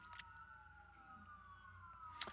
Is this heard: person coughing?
no